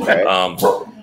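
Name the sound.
dogs barking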